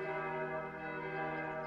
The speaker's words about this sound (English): And this is how the bells really sound, as untroubled and workable.